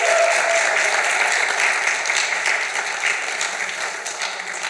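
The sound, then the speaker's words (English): An audience breaks into sustained applause as two people are invited up, a dense wash of many hands clapping at once, loud at first and tapering slightly over several seconds with no voices standing out. “And if they've made an impact in your life at all over the past couple months, just give it up for them as they get up here.”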